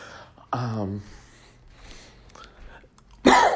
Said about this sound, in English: Wouldn't be an episode without me coughing.